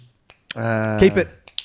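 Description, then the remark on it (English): A few sharp, crisp finger snaps pop out at the start and end, framing a short sustained vocal tone that swells in the middle. “I'm actually doing it right now. Oh, clicking. Keep it clicking. Well, that's what you're doing. You are literally clicking.”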